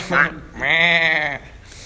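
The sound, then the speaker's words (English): A person imitates a sheep with one drawn-out, wavering "baa" bleat after a brief vocal lead-in. The bleat is loud, then the sound goes quiet. “You know what we call them? Bah, sheep. Stop being a sheep.”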